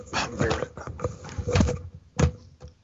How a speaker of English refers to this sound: There's that dog again.